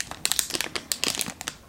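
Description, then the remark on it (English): The plastic packaging of a small Stitch keychain crinkles in quick, irregular bursts of crisp, bright crackling, each crunch short and sharp with brief pauses between, and no voices. “And hopefully it's not too crunchy sounding, but I love it so much, and I don't want to take it out of its packaging”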